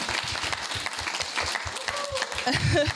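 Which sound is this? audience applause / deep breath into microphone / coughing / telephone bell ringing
audience applause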